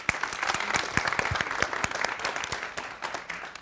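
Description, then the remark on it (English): An audience applauds to welcome speaker Julie Makinen, many hands clapping in a dense, crackling wash with sharper individual claps standing out, holding fairly level before tapering slightly at the end. “Please give a very, very warm welcome to Ms. Julie Makinen.”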